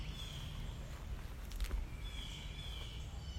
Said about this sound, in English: And I don't know if you can hear the birds. This area is surrounded by trees. And it's pretty quiet in the hood. Today it's Sunday morning. Can hear the birds all around. There's just a tiny, tiny breeze.